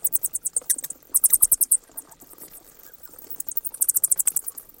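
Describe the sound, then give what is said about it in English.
Bats chirping in rapid bursts of shrill, high-pitched clicks and squeaks, several quick trains separated by brief lulls, with no one talking. “So you may not have heard that, but if they got into your house at one point or your attic, you might have heard them chirping like that.”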